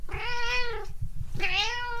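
A cat meows twice, two drawn-out, tonal cries with a rich harmonic whine, separated by a short pause, over a faint low rumble. No one speaks.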